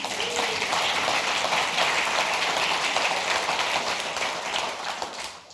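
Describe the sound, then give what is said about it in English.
A crowd breaks into sustained applause, a dense, steady wash of many hands clapping at once that stays loud throughout and tapers slightly near the end. “And yeah, we can all applaud. Go ahead.”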